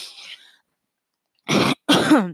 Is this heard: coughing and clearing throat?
yes